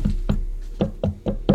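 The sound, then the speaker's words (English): Soft knocking on a door by someone with weak hands, about six light raps: two spaced knocks, a brief pause, then four more in an uneven rhythm, not very forceful. “Sorry, I can't knock very Come well.”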